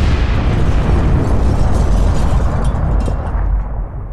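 A heavy car bomb set off by remote switch as a man opened his front door, blasting a 30-inch hole through the house's brick front wall: a loud, roaring blast with deep, booming low rumble that sustains for about four seconds before easing slightly at the end. No voices.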